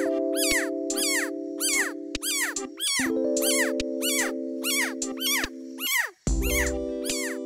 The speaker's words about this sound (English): And finally, when grasped, the frog may resort to a high-pitched call, almost like a froggy security alarm.